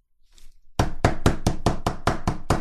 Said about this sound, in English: And he has to go out and knock on the neighbor's door. Well, this man knocks on the neighbor's door. You can hear it now.